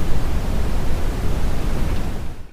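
A steady wash of brown noise, deep and rumbling with most of its weight in the bass, plays loudly and evenly for a couple of seconds before cutting off.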